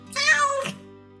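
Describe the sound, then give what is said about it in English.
A cat, Lagara, lets out a single clear meow, about half a second long, fairly loud, over a faint low background hum. “Lagara, the cat.”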